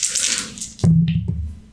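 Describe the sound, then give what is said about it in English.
Four dice rattle in a hand with a soft, hissing shake during a tabletop game, rolled to upgrade a drone, then land with a sharp clatter and a second knock as they settle. Nobody speaks. “I also get to roll 4 dice for this.”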